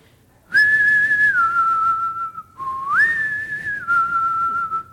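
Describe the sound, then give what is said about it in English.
A father whistles the family call on a farm near wheat fields, calling his child inside at dark: a two-part call twice in a row, each a rising then falling tune held steadily, loud with no talking. “And I would hear my dad do the family whistle.”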